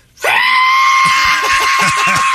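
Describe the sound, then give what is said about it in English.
A voice imitates a screeching whistle heard from a plane coming down, holding one loud, shrill, steady high note for about two seconds, with faint low murmurs underneath toward the end. “And I heard a screeching. A shave. Sorry, between a screech and a whistle.”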